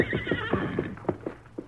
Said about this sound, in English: Listen, that's his horse.